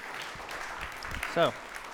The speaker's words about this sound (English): Thank you. Clap for her, maybe?